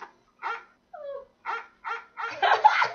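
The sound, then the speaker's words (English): A short run of dog barks and yips, with a brief whine among them, played back from a phone app through a small, thin-sounding speaker, growing louder and busier toward the end. “Oh, there's a dog one. Play the dog one.”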